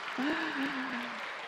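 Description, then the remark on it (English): An audience at a church birthday celebration for Jesus gives a family a round of applause for sharing the cake moment, clapping in a steady, dense patter of many hands, fairly soft overall, with a single drawn-out voice tone sliding along underneath the clapping. “Let's give them a round of applause for sharing this moment with us.”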